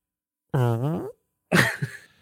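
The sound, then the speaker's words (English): Someone voices an imitation of a girl farting in a car: a buzzy, wavering raspberry lasting about half a second, then a short pause and a second breathier, sputtering burst that trails off. “She farted while you were making She farted.”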